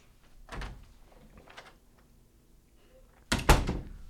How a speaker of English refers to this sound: Sorry, we had to let some stranger in on the podcast. He kept banging on the door. It was kind of annoying at that point.